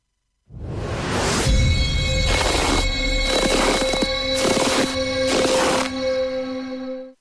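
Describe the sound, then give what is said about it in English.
Footsteps come in a run of about five loud, rhythmic, scuffing bursts, with a steady ringing, bell-like tone sustained underneath throughout. No one speaks. “So here's your first set of footprints for today.”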